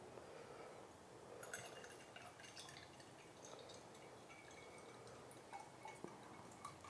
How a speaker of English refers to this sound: Still pouring.